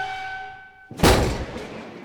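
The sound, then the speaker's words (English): A steady, high ringing screech fades, then a sudden loud explosive blast erupts as a knock spell forces a magic door open, with a rumbling roar, a second smaller crash, and a lingering noisy tail. “So as you put this in place, you hear this enormous screeching, exploding sound.”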